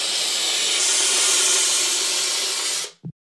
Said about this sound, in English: Cryonite, a frozen carbon dioxide spray.